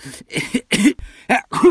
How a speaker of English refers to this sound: The strange noises that the chief soldier was making were, in fact, coughs.